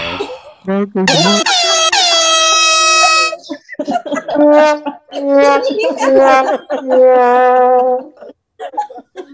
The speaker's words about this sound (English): Can I get the air horn, please?